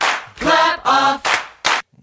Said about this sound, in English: Clap off. The clapper. Who didn't have one of those? I never had one. I wanted one.